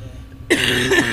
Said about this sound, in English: Someday I'll stop coughing. I'd like to see that.